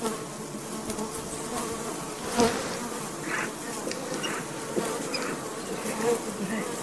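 Bees buzz steadily throughout, a dense, continuous hum of many insects, rising briefly in loudness now and then, with no talking.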